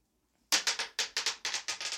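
After a brief silence, a rapid run of sharp, bright clicks and clatters, roughly ten quick hard hits in an uneven rhythm, like dice tumbling across a hard surface. No voices.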